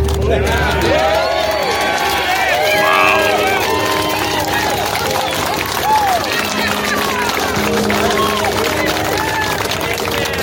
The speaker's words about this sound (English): And the throngs of adoring idiots cheer.